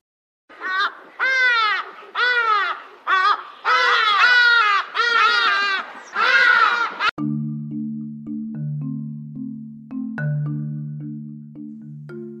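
A hadeda ibis gives loud, harsh, honking calls in about six rapid bursts over several seconds. Then the calling stops and a simple, steady low-pitched melody plays.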